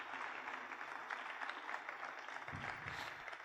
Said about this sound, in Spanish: ¿Cuántos dicen amén? Denle un fuerte aplauso al Rey de Reyes y Señor de Señores.